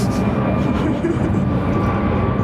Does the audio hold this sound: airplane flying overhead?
yes